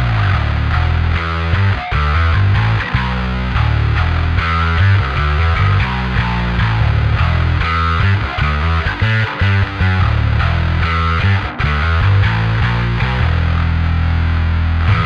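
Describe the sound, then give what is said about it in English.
A loud, heavily distorted high-gain electric guitar with a bright, mid-forward bite plays a dense, continuous riff with chugging low notes, no voices. It is a high-gain, high-mids drive tone from a Neural DSP preset named Vibranium Sledgehammer. “First, an absolutely smashing high gain, high mids drive tone from the Neural DSP presets, aptly named the Vibranium Sledgehammer.”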